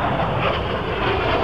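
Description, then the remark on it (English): A drone hums overhead, a steady, dense mechanical hum holding an even loudness throughout, with a broad rushing, engine-like roar and no voices. “That's not the same drone, is it?”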